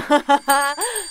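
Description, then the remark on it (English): A voice imitates a small bell rung by a character in a story: two quick ding-like bursts, then a longer sustained note that slides in pitch. It is clear and fairly loud, with nothing else in the background. “And she's going to ring a bell right next to her and say, Marionette!”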